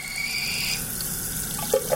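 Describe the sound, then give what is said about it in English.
Water pours steadily from a faucet into a sink, a constant rushing hiss with a faint whine early on and a couple of brief squeaky notes near the end. “A new household sensor could soon detect every drip coming out of your pipes, making it easier to conserve water.”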